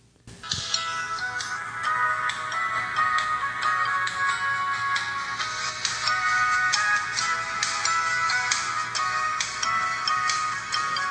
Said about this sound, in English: Holy crap, is that your ringtone? That would be the ringtone on my pink Motorola Razr.